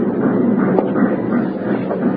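A train rumbles along the tracks in a steady, loud mechanical roar that fills the whole stretch, with faint rhythmic clatter beneath and no voices.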